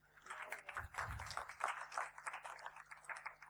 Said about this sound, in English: Take a seat. Give each other a clap as you sit down.